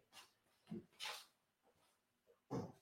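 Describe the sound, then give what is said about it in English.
A dog makes several short whines and yips in quick bursts, with brief quiet gaps between them and a louder final whimper near the end. “We're doing the thing to the dog, so you should have him.”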